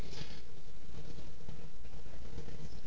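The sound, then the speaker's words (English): A low, steady rumble of thunder rolls on for a few seconds, broad and muffled, with no voices over it. “Jesus Christ, it's thunder.”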